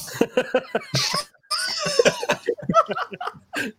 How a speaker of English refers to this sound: He's got a little bit of a cough he's been using an inhaler, so he's a little horse.